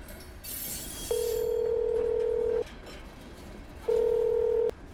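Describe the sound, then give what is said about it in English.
A telephone call being placed: two steady, clear electronic tones over faint background hiss, the first about a second and a half long, the second shorter, with no talking. “Where's that phone?”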